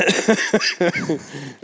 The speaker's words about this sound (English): Sorry, guys, you're going to hear that a little bit, and we're not going to take the time to edit out every single cough.